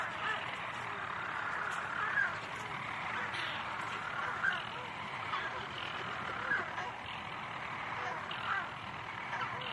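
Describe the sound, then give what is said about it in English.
A dense, continuous chorus of petrel calls at night in near total darkness, blending into a steady wash with a few slightly louder cries rising above it now and then. “in the kind of half-light we heard quite definitely predominantly petrels”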